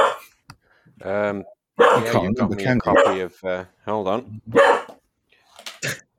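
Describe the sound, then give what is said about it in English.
A dog in a conservatory barks repeatedly in loud bursts: a couple of sharp yaps, a pause, then a quick run of barks tapering off into a few fainter ones at the end. “Can that dog not leave the conservatory?”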